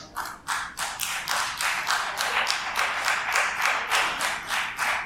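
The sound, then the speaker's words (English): Scattered clapping from a small crowd, from those saying they like what their taxes pay for, a steady run of sharp, bright hand claps at a moderate level that keeps going throughout, with no voices. “Give us a big round of applause on those of you that really like the taxes are paying.”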